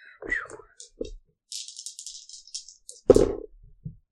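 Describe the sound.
A handful of dice clatters and rattles in a bright, scratchy burst lasting about a second, framed by short bits of people talking before and after.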